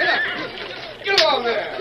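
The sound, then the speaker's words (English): Loud horse whinnies in two quick bursts, high and quavering, over a steady wash of splashing water as a wagon team of horses fords a stream, the water nearly up to their necks. “leave them horses be. Land sakes, the poor beasts are doing the best they can.”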